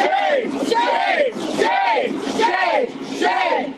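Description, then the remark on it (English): A crowd of housing protesters chants and yells in unison at at least a dozen Alameda County Sheriff's deputies, some in riot gear, outside a forcibly opened vacant house on Magnolia Street, loud, repeating the same shouted phrase in a steady rhythm about once a second. “vacant house on Magnolia Street has been forcibly opened, and there are at least a dozen Alameda County Sheriff's deputies, some in riot gear, facing off against supporters of Moms for Housing right now. They've been chanting and yelling at officers.”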